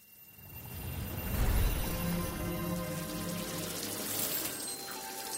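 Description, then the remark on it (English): Hot water runs steadily from a tap, a continuous rushing hiss that swells slightly early on and then holds even, with no voices. “don't use all the hot water.”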